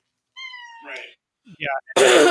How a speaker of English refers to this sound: Sorry, coughing.